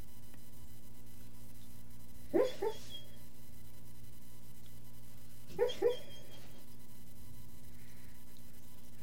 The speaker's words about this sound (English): Your dog's having a nightmare, okay?